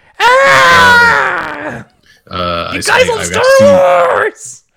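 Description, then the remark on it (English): A voice imitates Greg Miller screaming for EA at a game conference: two loud, strained, high-pitched yells, the first long and sustained, the second rougher and wavering, separated by a short pause. “Do Greg Miller screaming for EA.”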